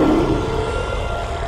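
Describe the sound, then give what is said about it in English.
A loud, deep monster roar sound effect: a single sustained, rumbling growl heavy in low tones, holding steady for its whole length with no talking over it. “There's a monster in the basement.”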